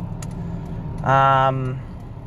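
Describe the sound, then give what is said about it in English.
Steady low rumble inside an old Buick Park Avenue car while driving, road and engine noise droning throughout, with a brief voiced sound from someone inside partway through. “Yeah, my car is an old car, but it's a nice car, you know.”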